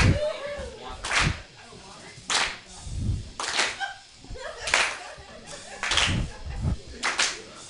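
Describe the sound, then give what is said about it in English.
An audience at Mutiny Radio claps together in a steady, slow beat during a live show, each loud, sharp crack landing about once a second, with a low murmur of voices and crowd noise between the claps. “No, keep clapping.”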